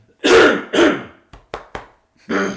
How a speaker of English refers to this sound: Excuse me, I'm going to cough.